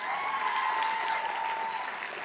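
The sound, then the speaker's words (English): Steady applause from a crowd for the speaker's bride fills the whole stretch, a dense wash of many hands clapping at an even, sustained loudness with no voices standing out. “Clap it up for my bride, y'all.”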